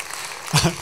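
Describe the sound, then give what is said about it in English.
A church audience applauds its pastor with a dense, steady wash of clapping, and about halfway through a voice comes in over the fading applause. “I'm going to keep saying that every week just to get applause.”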